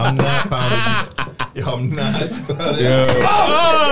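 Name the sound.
shot glasses clinking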